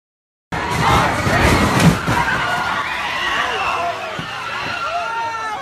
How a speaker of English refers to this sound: Twenty-year-old James Alex Fields Jr. rams his car into the crowd, sending humans flying through the air like rag dolls, shattering bones and lives.